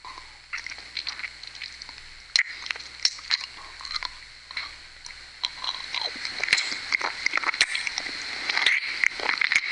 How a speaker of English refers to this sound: You like the sucking noise?